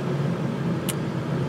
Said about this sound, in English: I'm doing this in the car on the drive, but I can't do that every week